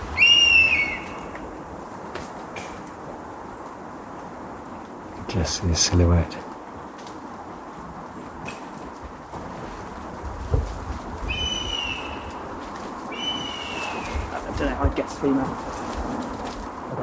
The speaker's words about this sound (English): is a truly golden opportunity to get close to an incredibly rare bird of prey, the honey buzzard. I was lucky enough to join an expedition to a secret forest in South Wales to record the ringing of honey buzzard chicks.